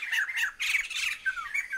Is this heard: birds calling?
yes